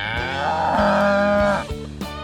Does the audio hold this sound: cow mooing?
yes